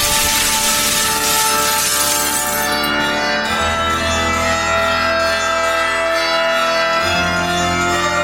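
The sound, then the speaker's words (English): Loud crash of window glass shattering as a man throws himself out of a window at night, with a bright burst of noise that gives way to a long, ringing shimmer of tones fading slowly. No voices. “Surrounded by shards of glass, he let his body plunge down into the cool night air.”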